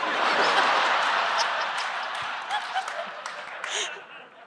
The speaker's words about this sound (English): Wait a minute. That child was clapping.